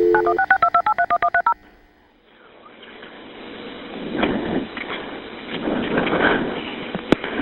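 A quick run of about eight touch-tone telephone dialing beeps of a dispatch call to Monroe 911, made seconds after a shooting around 1 a.m., evenly spaced and clear, followed by a hissy, rumbling line noise with faint background murmur.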